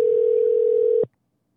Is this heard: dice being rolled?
no